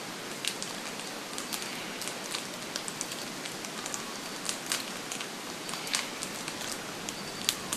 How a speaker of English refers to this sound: It's a bird sound, but not a call or a song. It's the noise made by a flock of about 8 or so gangang cockatoos chewing on little gum nuts in the Blue Mountains.